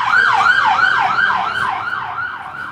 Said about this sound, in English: It's funny, that was in a room ambulance. I think I know the driver of that.